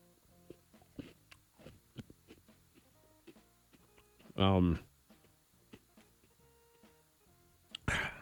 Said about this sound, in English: Wait, you choked? I never choked. Okay. I never coughed after a Cinnamon Toast Crunch before.